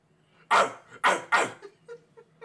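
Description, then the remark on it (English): A person, taking a drinking-game dare to bark at the moon, loudly barks like a dog three times in quick succession, each bark a gruff, throaty burst, followed by a few faint, softer sounds. “All right, bark at the moon loudly three times or drink three times.”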